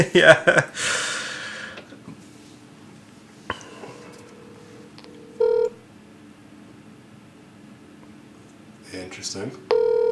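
A phone call being placed: two short, steady electronic ring tones a few seconds apart, clear and close, with a burst of breathy snorting noise at the start.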